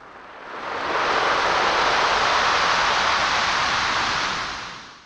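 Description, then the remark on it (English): A single Pacific Ocean wave rushes in with a broad, steady hiss that swells, holds for several seconds, then slowly fades as the water drags back over gravel and pebbles. Loud, with no voices. “Delivering gravel and pebbles. The waves, like sandpaper, further reshaping the land.”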